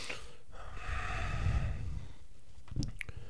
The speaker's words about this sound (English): And I kind of just start breathing very heavily.